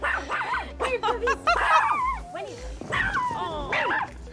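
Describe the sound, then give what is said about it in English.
Dogs barking at a home in 2003 as they try to run off a camera crew: a busy flurry of high-pitched yips and yaps mixed with whiny, whimpering cries, overlapping and continuing without pause for the whole stretch. “We've just uncovered some footage from a 2003 visit to your home when your ferocious dogs tried to run out our camera crew.”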